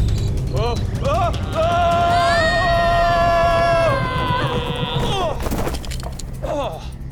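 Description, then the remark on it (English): A warbling electronic robot whine rises and holds as a steady buzzing tone, then breaks into a loud, clattering mechanical crash as the robot character Cybot falls over, with a low rumble underneath throughout. “Was that Cybot falling or was it his glasses falling?”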